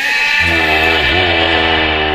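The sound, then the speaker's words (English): A single loud, drawn-out bleat from one of a group of goats, with a wavering, buzzy tone that dips in pitch midway, sounding heavily processed or distorted, with no talking over it. “What are all these goats doing here?”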